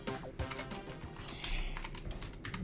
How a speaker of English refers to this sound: What the fuck are you typing